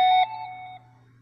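phone notification beep

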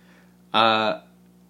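cat meowing into microphone

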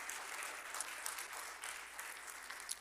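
audience clapping hands

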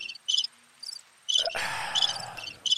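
crickets chirping sound effect

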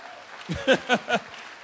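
audience clapping

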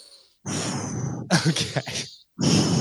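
heavy breathing

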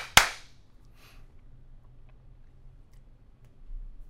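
hand claps

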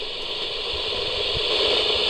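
radio interference static

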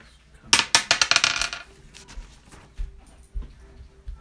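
rolling a d20 die

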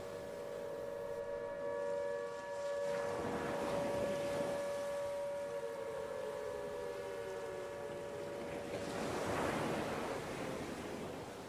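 ocean waves lapping

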